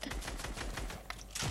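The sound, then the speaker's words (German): Rapid, busy clicking of computer keyboard keys as someone plays a video game, a dense run of sharp taps with a few louder strikes, continuous, with a low background rumble and no talking. “Okay, du spielst auf Tastatur.”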